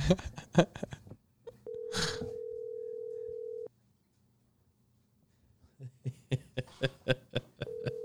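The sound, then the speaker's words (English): An outgoing phone call to a band's lead singer rings: one long, steady electronic ring tone, then a pause of silence, with quick rhythmic tapping pulses before and after and a second ring starting at the end. “Calling lead singer, ….”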